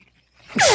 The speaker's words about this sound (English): Oh, bless you. Geez. Still sick.